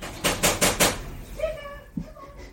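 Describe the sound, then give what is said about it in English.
A stuck door that can no longer open is rattled and shoved four times in quick, even succession, loud, then things settle into a quieter wavering tonal sound. “That door can't open anymore.”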